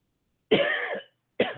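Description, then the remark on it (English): Two loud coughs with a pause between: a longer, raspy first cough followed by a shorter second one, with no talking. “I'm coughing.”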